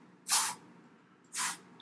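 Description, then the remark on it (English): Two short bursts of an aerosol spray can hissing, each lasting about a quarter second with a pause between, bright against a quiet background. “Spray the spray. It's getting bad over here.”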